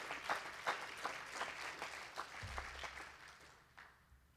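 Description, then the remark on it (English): An audience claps their hands to the Lord in a dense, steady burst of applause, many overlapping sharp claps forming a fairly loud wash that gradually thins and fades toward the end. “Oh, I wish somebody clap your hands to the Lord for making all this possible.”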